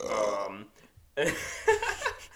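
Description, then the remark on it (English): Two drawn-out, throaty burps sound fairly loud, separated by a short pause, the second rougher and more broken, with a laugh-like vocal edge. “And you just get burping the whole time.”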